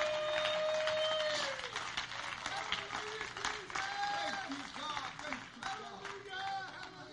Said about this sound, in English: Oh, let's give a hand clap of praise to the Lord.